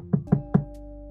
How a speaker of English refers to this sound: But then he comes back and knocks on the window.